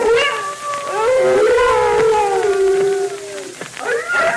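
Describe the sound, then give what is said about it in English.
Several timber wolves, gathering and circling, howl together in long, wavering, overlapping tones that rise and fall, fairly loud and sustained, with a fresh howl breaking in near the end. “Those wolves have smelled us, and they're gathering.”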